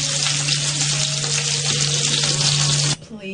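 Sliced mushrooms fry in a hot pan with a loud, steady hiss and crackle, over a constant low hum, until the sizzle cuts off abruptly just before the end.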